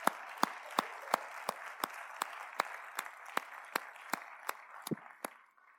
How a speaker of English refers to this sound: It's okay to clap.